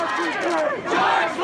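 A dense crowd of protesters at 3rd and Pine in Long Beach yelling and chanting together, many raised voices overlapping into one loud, continuous roar with rising and falling shouts throughout.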